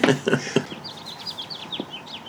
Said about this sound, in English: And the bird song means it's time to move on to our next subject.